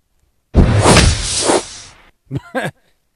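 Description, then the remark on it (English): A loud, sweeping magic-spell whoosh surges for about a second and a half, then two brief bright tonal blips sparkle right after it, clear with no talking. “Alright, magic spell.”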